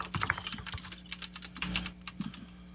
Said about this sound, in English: I can hear you typing really well. See there? Well, that's because of this stellar equipment that I have.